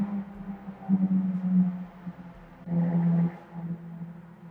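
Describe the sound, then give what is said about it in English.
A steady low rumble of road traffic with no voices, swelling twice as vehicles seem to pass, carrying a droning engine-like hum underneath. “Beautiful ambient sounds, traffic on the road there.”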